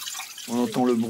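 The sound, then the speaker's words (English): Water trickles over rocks and splashes steadily in a soft, continuous hiss, part of an art installation at the Bourse de Commerce in Paris; about halfway through, a voice begins speaking over the flowing water. “We hear the sounds of water trickling over the rocks.”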